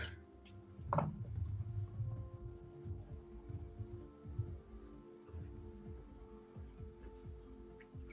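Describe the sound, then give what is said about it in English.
Two dice are picked up and rolled, making a faint rattle and a series of light clicks and taps against a table over a low steady hum, with no one talking. “I'm looking for two dice that like me.”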